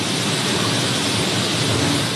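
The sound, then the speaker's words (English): A steady, dense rushing hiss of grain pouring from a truck's raised bed into a grating in the ground at the dumping area of a grain silo, making huge clouds of dust, loud and unbroken for the whole stretch, like heavy rain, with no voices. “Grain pours into a grating in the ground, making huge clouds of dust.”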